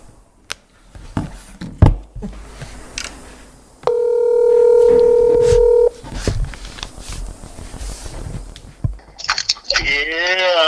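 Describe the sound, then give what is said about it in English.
A phone call to a man, placed from the speaker's own phone, rings out over a speakerphone: one steady, two-second electronic ring tone amid clicks and rustling handling noise, followed by a brief warbling tone at the end. “Watch, I'll call him from my phone.”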